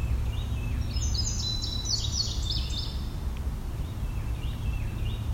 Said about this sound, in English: There's a Carolina wren.